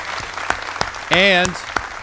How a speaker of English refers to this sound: A round of applause for the nominees.